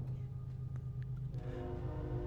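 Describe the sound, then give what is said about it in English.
A train passing in the background, heard at a house: a steady low rumble with a droning hum that gains a layered, tonal edge partway through. It stays fairly quiet and continuous throughout. “That's so weird that there'd be a train in the background at your house.”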